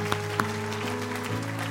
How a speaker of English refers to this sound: I want everybody right now, let's give a hand clap to all those that raised their hand, that they say, you know what, I need it.